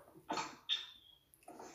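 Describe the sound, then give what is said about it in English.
A sneeze: a breathy, hissing burst, then a sharper hiss, followed by another noisy burst about a second later. Fairly quiet overall, with no talking. “God bless you.”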